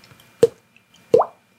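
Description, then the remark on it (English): Two hollow, wet plops made with the mouth, imitating raindrops, spaced under a second apart; the second has a quick upward-bending pitch. No talking, just quiet between. “I'm going to do the raindrop sound.”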